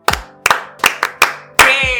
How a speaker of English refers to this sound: But I think this year I should applaud myself. Yes, I let's think do it. Ready, go.